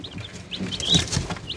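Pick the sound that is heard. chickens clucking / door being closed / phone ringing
chickens clucking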